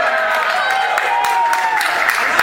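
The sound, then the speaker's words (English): An audience at a manga panel claps in a steady, dense patter of many hands as the worst manga is about to be announced, with whoops and voices rising over it throughout, loud and continuous for the whole moment. “Don't clap for this.”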